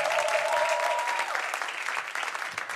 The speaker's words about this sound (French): Donc, merci à toute l'équipe. Est-ce qu'on peut donner encore une fois une bonne main d'acclamation à l'équipe de louange adoration?